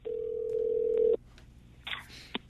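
A steady telephone dial tone hums for about a second, then cuts off, followed by a couple of short, bright dialing beeps over a quiet line.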